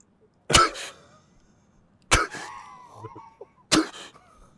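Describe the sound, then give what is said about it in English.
A voice imitates a pilot's anti-G straining breath, the Hick maneuver used in air-to-air combat flying: three sharp, forceful, cough-like exhalations about a second and a half apart, with a strained, tight vocal hum between them. “And if you have to look for this plane behind you, I mean, you're doing, you're breathing, you're doing this thing called a Hick maneuver, and you're literally, it literally feels like this, where you're just like...”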